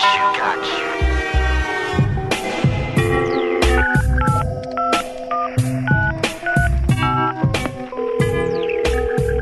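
A rapid run of electronic telephone keypad tones as a man dials a woman about installing her satellite TV, beep after beep in quick irregular succession, loud, layered over a dense buzzing, musical backdrop.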